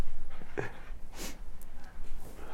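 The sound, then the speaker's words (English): An excited dog whimpers with a high, wavering whine, then lets out a short bark, with faint breathy sounds and background noise around it. “The dog is going crazy.”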